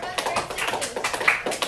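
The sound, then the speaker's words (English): A small group of five grade 7 students who have joined a class clap for themselves in a quick, uneven patter of overlapping hand claps, with voices murmuring underneath throughout. “Yeah, you can clap for yourselves.”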